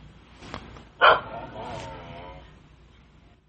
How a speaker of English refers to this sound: So you can see how it sounds there. And some of the reviews said that it actually has about 3 different types of dog barks on the track.